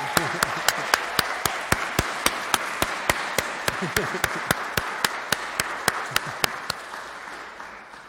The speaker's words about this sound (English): Let's give a round of applause to Wendy.